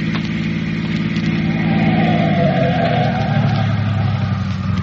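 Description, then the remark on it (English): A car engine hums steadily as the car comes down a highway some 50 miles from Amarillo, then its pitch drops midway through as it slows down to stop for a sailor and settles toward idling. No voices are heard. “Unless this car that's coming down the highway stops.”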